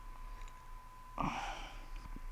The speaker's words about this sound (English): Take a sip of my Treehouse beer. Hold on. Hear this sip.